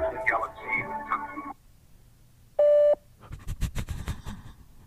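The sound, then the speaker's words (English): A single steady electronic phone beep, about a third of a second long, sounds through a speakerphone held up to a microphone during a call, between stretches of muffled, tinny background voices and line noise. “No, it just beeped.”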